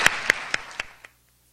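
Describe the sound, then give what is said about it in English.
Five or so sharp claps in a quick, even rhythm, fairly loud, fading slightly before stopping abruptly after about a second, a brief smattering of applause thanking speakers at a campus event. “I want to give you a round of applause and get moving on the next portion.”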